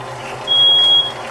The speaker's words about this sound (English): And your fire alarm is being sensitive again. It is.